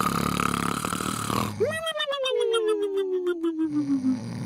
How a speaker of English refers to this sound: All right, let's jump into our sleepers. Sleepers this week, cue the snores.